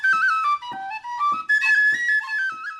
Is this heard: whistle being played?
yes